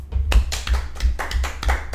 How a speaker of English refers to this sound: Snapping fingers. Man, we did away with the organic claps, huh?